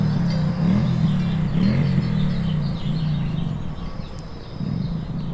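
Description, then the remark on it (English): A motorcycle engine idles and revs in a parking lot with a deep, wavering throb, its pitch rising and dipping steadily for several seconds. Faint bird calls sit in the background. “And to hear a sound like a motorcycle engine kind of just out of your ear range, it really kind of startled me for a second.”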